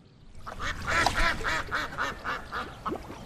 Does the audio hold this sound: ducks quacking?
yes